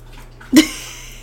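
A pet named Brody eats and drinks, making a single short, wet slurping crunch, a sharp burst that fades quickly over a low steady hum. No one speaks.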